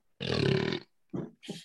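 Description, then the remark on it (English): A voice imitates a lion's roar: one long, loud, gravelly roar followed by two shorter, rougher growling bursts, with no other talking. “Wow, hey, that was lion or the lion.”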